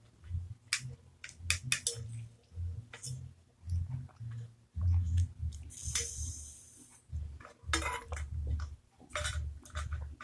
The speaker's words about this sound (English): sorry, guys. My throat. Hold on. I'm thirsty. Hold up. Let me get a sip. Oh, so this water. Hold up.